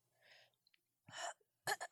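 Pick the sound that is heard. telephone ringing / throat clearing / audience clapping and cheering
throat clearing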